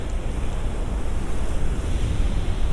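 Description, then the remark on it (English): Steady surf roars on a beach in Brighton in the late afternoon on a cold, clear day, a continuous wash of breaking waves with some rumbling wind buffeting the microphone. No one speaks. “Today I am in Brighton, I'm on the beach. I've just walked down from the train station.”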